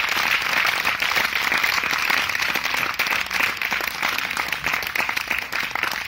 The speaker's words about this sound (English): Let's have a huge round of applause for the woman power that's fascinating their party.